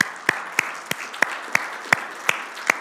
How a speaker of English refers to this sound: Can we just like give the Lord a round of applause?